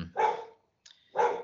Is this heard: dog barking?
yes